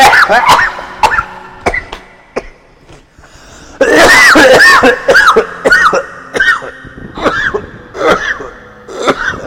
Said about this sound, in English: … needs a cough.